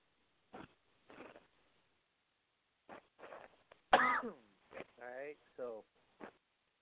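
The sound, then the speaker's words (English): A series of coughs and raspy throat clearing, some short and sharp, others drawn out and gravelly, scattered across several seconds with brief pauses between bursts. “While I cough the night away, not sleeping the night away, pissing the night away.”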